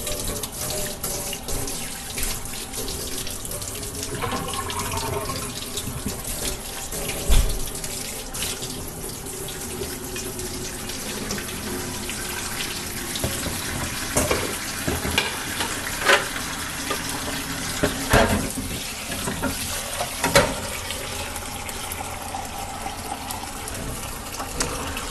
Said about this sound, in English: I'm gonna run this hot water here.